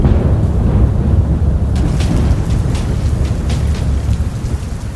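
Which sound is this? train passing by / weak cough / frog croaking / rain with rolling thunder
rain with rolling thunder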